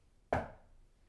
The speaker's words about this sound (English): If there's anyone in this house, can you please come talk with us? Can you make a knocking noise like this?